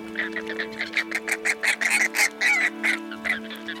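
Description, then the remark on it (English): A flock of water birds calls in a rapid, overlapping series of honking, goose-like cries, fairly loud, with a steady low hum running underneath. “The field of reeds at sunrise, the steady plunk of the ibis beak in the water, the call of the cormorant, the flight of herons in the morning, the white stork rises in the morning, the flamingo rises in the morning.”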